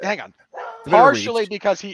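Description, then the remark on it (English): A female dog barks frantically in rapid, loud bursts, several sharp yaps tumbling over each other with a brief whine between them, while a person talks at the same time. “As my dog loses her freaking mind, you don't need to be yelling.”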